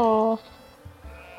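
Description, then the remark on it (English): A person gives a short, loud, nasal "baa", imitating a sheep's bleat, held for a moment and then cut off, leaving quiet low background noise. “All the sheep just like dog pile on to sheep pile onto Fifi.”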